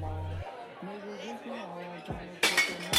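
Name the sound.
glasses clinking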